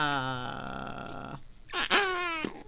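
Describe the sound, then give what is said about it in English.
Two squelchy, buzzing fart noises from squished Flarp putty, which is abnormally cold: a long droning one that sinks slightly in pitch, then after a short gap a sharper squeak that bends upward before trailing off. “It's funny because it's like all my recording equipment and then flarp.”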